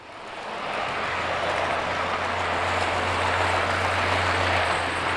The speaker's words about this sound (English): That's one of the model freight trains rolling through a tiny town in the club's main room. There are miniature buildings, trees, rocks, bridges, billboards, and many other created bits of scenery.